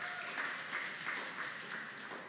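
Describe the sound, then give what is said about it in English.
Steady applause from an audience for the fathers on Father's Day, a dense wash of many hands clapping at once, fairly loud and sustained throughout with no voices standing out. “Let's give a round of applause again to our fathers.”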